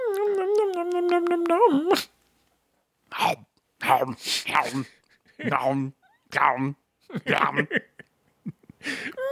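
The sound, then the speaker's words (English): A person voices a drawn-out, nasal cat meow lasting about two seconds, with a wavering pitch that dips and levels off. After a short silence, people start talking. “Oh, I was just making the sound a cat makes.”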